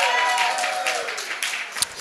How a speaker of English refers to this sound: And so I went to our band director, Mr. Porter, at the time, and I said, Mr. Porter, I think, if I say that again, will you applaud again?